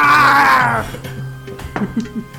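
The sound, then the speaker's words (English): A person imitates a growl, growling back at a growling creature, giving a loud, strained, raspy vocal roar that lasts under a second and fades, followed by a few faint clicks and shuffles. “It looks at you and begins to growl. I'm gonna growl back.”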